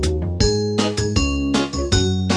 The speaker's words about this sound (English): The bell on the bus goes ding, ding, ding, ding, ding, ding, ding, ding, ding. The bell on the bus goes ding, ding, ding, all day long.